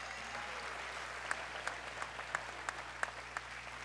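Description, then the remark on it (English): A crowd at a crusade meeting claps to Jesus steadily, with a handful of sharper individual claps cutting through at a fairly even rhythm, roughly every third of a second. No one speaks over it. “Clap to Jesus.”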